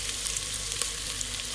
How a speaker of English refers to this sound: So I'm making Egyptian rice, which is great because first you have to kind of saute the onion, red onion, sauteing themselves in mostly olive oil with a little bit of coconut oil.